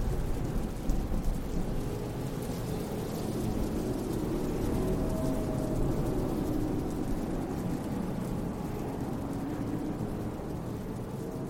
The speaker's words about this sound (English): And then, at that exact moment, the sky explodes with thunder, and there is a massive downpour of rain.